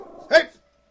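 animal, dogs barking excitedly

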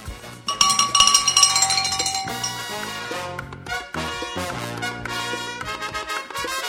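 cowbell ringing

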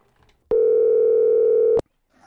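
signal or alarm, telephone dialing tone

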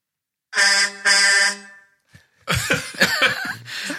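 vehicle, car horns honking

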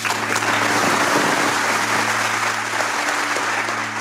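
crowd, crowd applause

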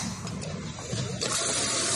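nature, water gushing

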